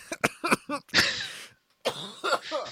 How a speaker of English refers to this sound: I'm trying to drink water to get rid of this cough